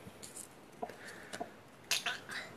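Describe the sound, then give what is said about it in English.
A faint, wet gulping sound, like someone swallowing, comes as a few soft, brief squishy bursts, with a slightly stronger cluster near the end over low background hiss. “What was that noise? It's like gulp.”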